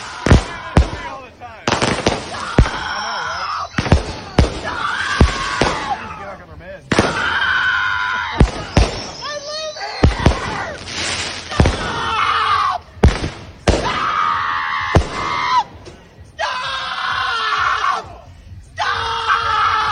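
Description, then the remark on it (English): American fireworks explode in a rapid, irregular series of loud bangs and pops while a woman who dislikes the fireworks screams and yells almost continuously over them. “But there's a woman, I don't know where this was, but she was caught on camera because she didn't like the fireworks.”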